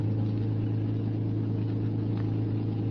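car engine running

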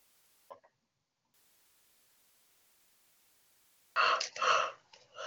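yawning

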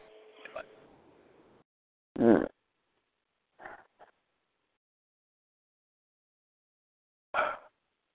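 yawning

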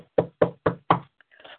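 knocking

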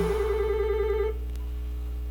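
telephone ringing

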